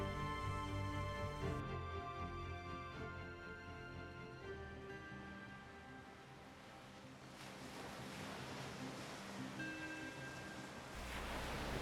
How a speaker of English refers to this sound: We stand at the coastline, looking out into the darkness that is the ocean. The water strikes at our feet, casting small bits of mist up onto our legs.